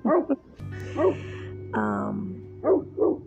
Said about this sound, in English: Hear my wolf in the background. He likes to sing too. And there's another one on the side singing as well.